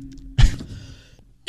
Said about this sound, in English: I just have the cough hanging on.